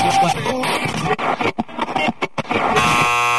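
A stretch of loud, choppy, noisy sound breaks off, then a quiz buzzer blares a steady, harsh electronic tone that holds through to the end.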